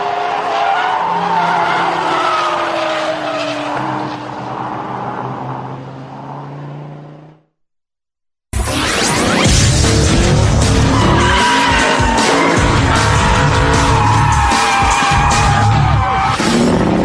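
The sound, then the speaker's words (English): Loud, sustained tire squeal from a car drifting sideways, with engine roar rising and falling; a brief silent gap splits it into two long skids, intense. “Drifting with Johan Reich or sliding with Katharina Kuhlman, this type of driving is valuable practice for anybody who hopes to keep control of a high-performance car on high-speed highways.”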